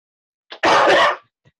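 A single loud, harsh cough from a person who has had a cough for 20 years that inhalers do not help bursts out after a brief catch of breath, lasting about half a second before fading into silence. No one speaks.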